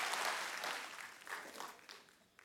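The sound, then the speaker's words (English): A church audience gives a hand clap and shout of praise, clapping loudly in a dense, steady burst of applause, with scattered voices calling out among the clapping, before it gradually thins and fades out. “Can you give him a great hand clap and shout of praise in here?”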